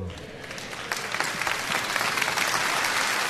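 An audience claps steadily, a dense wash of many hands that builds slightly in loudness over a few seconds, with a faint murmur of voices underneath.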